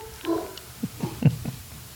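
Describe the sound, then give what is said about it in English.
Dogs bark faintly, a quick irregular run of five or so muffled barks with no one talking over them. “Goddamn dogs. They strike again.”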